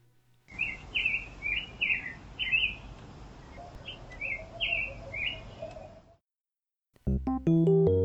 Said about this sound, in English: And there are also special nice things for me. I get to hear the birds in the trees outside of our house.